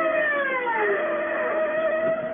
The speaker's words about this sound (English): The siren gouges a path through the city swiftly like a wild sow swaying across the dark. And you ride it. Inside of you, you're screaming with it.